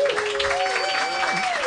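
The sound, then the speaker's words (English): A crowd claps for Jeff Davis in a steady, dense patter, with a few whistles or cheers rising over the applause throughout. “Round of applause for Jeff Davis.”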